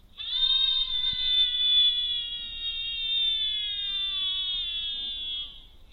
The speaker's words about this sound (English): So it's playing the audio of the screams, and it's also recording the audio,